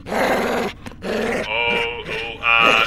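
A dog growls in a low, rumbling snarl, breaking off briefly and then rising into harsher, higher-pitched snarling bursts, loud throughout with no talking.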